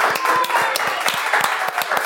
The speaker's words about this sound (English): We're gonna clap it up